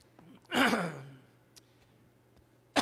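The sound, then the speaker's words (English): A single rough, breathy throat clearing by a preacher during a church sermon, a short gravelly burst that trails off, followed by quiet with a faint click and the start of another sound at the end. “That's not COVID. That's just clearing my voice, clearing my throat.”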